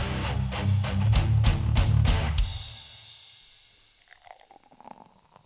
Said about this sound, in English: I mean, some bloody head on that. I was going to say, I've seen some beers be poured before. That's definitely a pour. We've got to wait half an hour now for the fizz to go down. Some good head, that is.